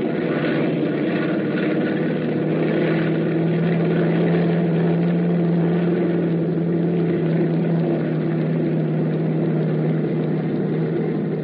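Loud, steady drone of propeller plane engines running at full power as the plane takes off, a deep humming roar with a low throbbing tone that holds constant throughout, with no voices.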